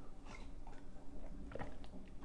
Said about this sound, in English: Hold on, I got to get a sip of tea.